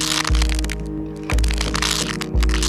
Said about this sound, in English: Violently and heinously, I heard my own bones snap from within my skin.